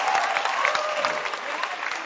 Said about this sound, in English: By the way, clap your hands for the film stars. They were beautiful today. Beautiful, beautiful.